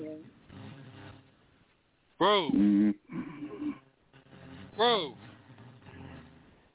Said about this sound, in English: Dude. You're snoring, man. You're snoring. You might have to get the machine, man.